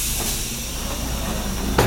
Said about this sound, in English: Eventually, they came upon another sizable hydraulic door, to which Arvandus offered his hand. Another scan. The door opened with a hiss, ghosts of steam escaping like trapped prisoners from a jail cell.